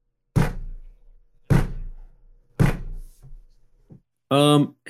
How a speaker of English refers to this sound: And then out of nowhere, there's a knock at the door.